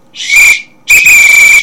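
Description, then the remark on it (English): Two loud, shrill blasts on a whistle: a short toot followed after a brief pause by a longer, sustained blast, with no talking. “This is a whistle. And I'm blowing the whistle right now.”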